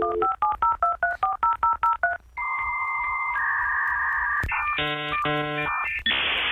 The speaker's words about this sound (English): What strikes me about all of that, because that's the, you know, getting a dial-up on the internet back in the day, and we sat there and we waited and we thought it was amazing, but very quickly we became very impatient.